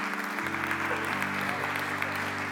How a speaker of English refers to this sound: Let's give Pastor Archer a big hand clap of praise, amen, for that word.